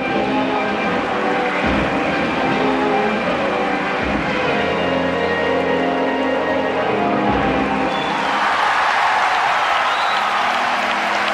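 A large crowd applauds continuously at an ice rink at the 1984 Winter Olympics in Sarajevo after Torvill and Dean's gold-winning skate, people standing and Union Jacks flying, a dense, echoing wash of clapping and cheering that swells louder toward the end.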